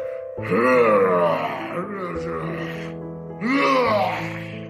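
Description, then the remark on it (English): A man's voice imitates the wrestler PCO's wild hooting and snarling: two long wailing, groaning bursts with bending pitch, separated by a brief rougher growl, loud throughout with no spoken words. “And I totally like, you know, he makes all the crazy, he's cross-eyed, he rolls his eyes back in his head, he's hooting, he's hollering, he's snarling, he's screaming, making all these noises.”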